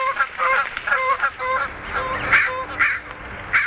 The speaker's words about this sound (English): Canadian geese, seagull. We pretty much got the whole gamut of bird life.